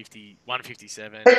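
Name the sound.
sneeze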